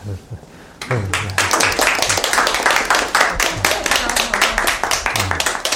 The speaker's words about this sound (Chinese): 太感谢 了。再来一轮掌声。